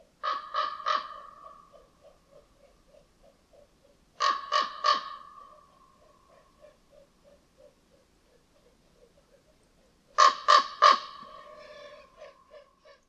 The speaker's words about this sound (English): In this next recording, which is pretty amazing, you'll hear a raven in Sweden as it flies by. If you listen carefully, you can hear the wings beating against the air.